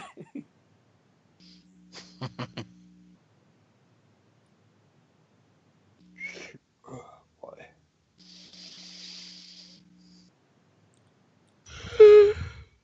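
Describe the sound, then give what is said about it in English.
Soft breathy exhalations over a steady low hum, ending in a loud, drawn-out voiced yawn with a rising and falling tone. “Stop yawning.”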